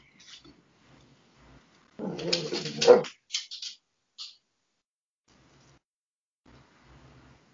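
A dog lets out a burst of whining, whimpering vocalizations lasting about a second, followed by a few shorter whines, with quiet background between.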